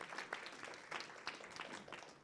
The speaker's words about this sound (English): Let's give God a clap offering. Amen. Praise the Lord. Praise the Lord.